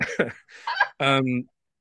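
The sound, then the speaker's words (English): A few sharp coughs in quick succession from a person who is ill, then a breathy hack and a short, strained voiced sound as the fit trails off. “apologies for the coughs.”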